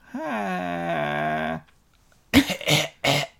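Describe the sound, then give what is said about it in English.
Someone mimics the throat clearing of the character Grandma Gloria: a long, droning voiced groan, a short pause, then three harsh, raspy hacking bursts in quick succession. “Oh, the throat clearing.”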